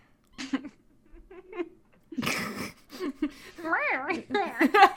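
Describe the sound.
A cat meows near the end, a wavering, drawn-out cry followed by a shorter one, amid soft voices and a burst of rustling noise.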